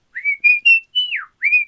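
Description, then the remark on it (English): A cook cooking sizzling chili fajitas whistles a short, lilting tune, a string of clear sustained notes with a gliding drop in the middle, no talking. “You just listening to him whistle? Because I'll keep whistling.”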